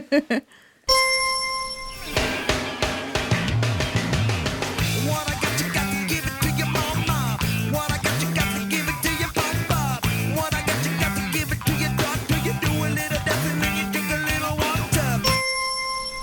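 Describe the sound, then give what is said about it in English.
A bright bell ding rings out at the start and again near the end, its clear tone lingering, while busy music with gliding bass notes fills the stretch in between. “Okay, there's a real ding now.”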